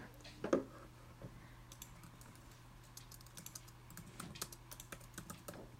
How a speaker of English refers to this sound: I think in the background you just hear me clicking on my laptop. I think you can hear me too.